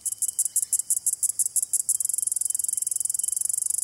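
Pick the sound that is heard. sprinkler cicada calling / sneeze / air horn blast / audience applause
sprinkler cicada calling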